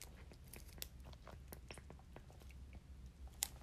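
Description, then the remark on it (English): Someone drinks water, with a string of wet mouth clicks and swallowing sounds at an irregular pace over a low background hum. Nobody speaks. “I'm drinking water, guys.”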